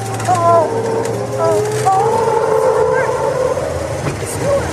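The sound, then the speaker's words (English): A Humvee's engine drones loudly and steadily, with whining tones that rise and fall as it swings through a sharp turn at under 30 miles an hour, in a demo of how unstable the vehicle is when turning. “to suit up for a demo of how unstable these vehicles can be while making turns.”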